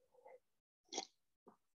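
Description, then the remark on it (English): Someone sips hot Black Rifle coffee: a short murmur, then a sharp airy slurp and a softer gulp-like sound, all quiet with no talking. “Pardon the sip on the coffee.”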